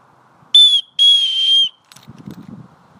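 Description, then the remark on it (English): Two loud, shrill whistle blasts to recall a dog, a short one followed by a longer sustained one. Soft rustling and low thudding follow once the whistling stops. “But instead I have to make sure that the dog returns to base, rather than run up there, so there'll be a loud whistle.”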